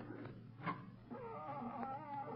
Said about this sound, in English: Listen. What's that? It sounds like a cat. That's the loudest cat I've ever heard.